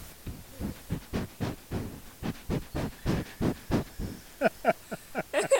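An animal named Potato sniffs at the microphone in a rapid, steady series of about sixteen breathy huffs, each a short hissing puff, growing sharper and snuffling toward the end. No one speaks.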